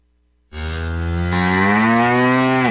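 A single long, loud cow moo starts after a brief silence and holds steady for over two seconds, deep and resonant with rich harmonics, with no talking.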